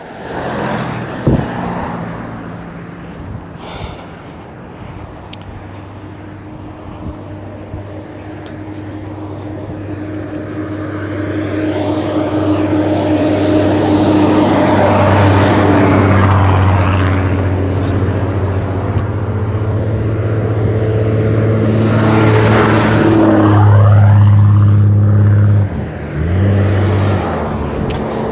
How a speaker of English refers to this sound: Sorry, there's a lot of buses coming by.